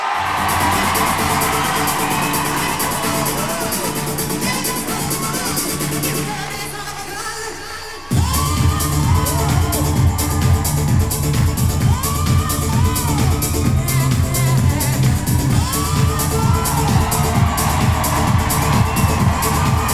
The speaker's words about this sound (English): The most requested man on Talking Bollocks Live. Get up on your feet, put your hands together, scream the fucking gaff down.